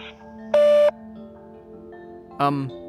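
A sharp electronic voicemail beep sounds, then after a short pause a second, briefer tone, both loud against a low steady hum, signaling it's time to record.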